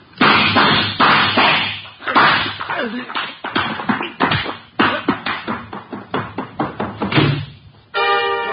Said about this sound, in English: you know I dislike the banging of doors.